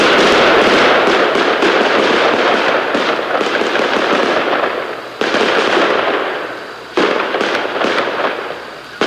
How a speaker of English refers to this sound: Dozens of neighbors here in Stanton Heights were awakened by the sound of rapid gunfire this morning.